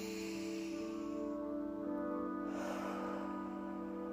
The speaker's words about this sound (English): We're just going to kind of check in for a minute. We're just going to start with a deep breath in through our nose.